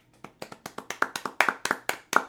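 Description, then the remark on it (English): Hands clap in a quick, uneven burst of about a dozen sharp claps over two seconds, steady in loudness, with no voices, like a small group applauding. “Hey, did you notice that clap made it sound like there's more people in here?”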